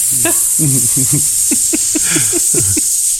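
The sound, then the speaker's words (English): A person hisses like a snake, a loud, steady, airy hiss that runs unbroken for about three seconds while short voiced murmurs or chuckles sound faintly underneath. “So everybody turns into snakes, and but that's all that happens.”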